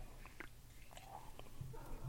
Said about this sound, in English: Speaking of happy hour, let me get another sip of my Choco Vesa before it gets warm.